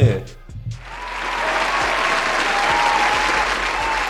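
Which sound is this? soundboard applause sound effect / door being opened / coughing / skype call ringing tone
soundboard applause sound effect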